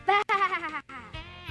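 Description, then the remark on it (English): A person in a sheep costume for a Christmas play imitates a sheep, giving a couple of wavering, quavering bleats, one longer cry followed by a shorter, shakier one. “Another Christmas play, and I have to be a sheep.”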